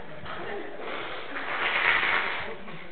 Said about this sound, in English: I'm going to break a preaching rule here. I'm going to blow my nose. It'll be better than hearing me sniffle the whole time.